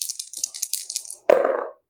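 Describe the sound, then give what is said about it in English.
Dice rattle in a quick, irregular clatter of bright clicks, rolled for a brawl roll in a game, then land with a sharp thud and brief tumbling rattle before stopping on snake eyes. No one speaks. “stick your foot out and make a brawl roll”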